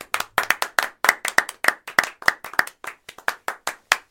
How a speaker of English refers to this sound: Thanks, buddy. Round of applause, man.